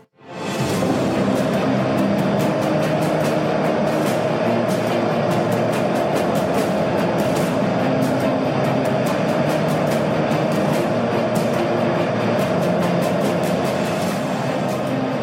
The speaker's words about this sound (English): All right, so those thrust sounds that you're hearing behind the music are the Rutherford engines, and they're the main propulsion system for the Electron rocket.